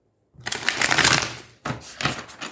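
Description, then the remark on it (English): A deck of tarot cards being shuffled: a long riffling burst of papery flutter, a brief pause, then a second shorter round of shuffling. No talking. “And again, I'm clarifying with the same deck this week.”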